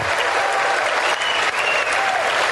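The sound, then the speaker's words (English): Steady, dense applause from a crowd, loud and continuous throughout with many hands clapping at once and no clear individual rhythm. “He's clapping.”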